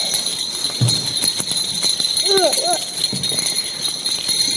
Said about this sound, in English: And parents, every time you hear this bell when you maybe don't want to, I want you to remember that God breaks into our world in the least likely of times.